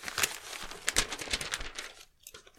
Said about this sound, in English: Okay, let me just think about my vote for a second here. I'm just going to quickly get it down on paper.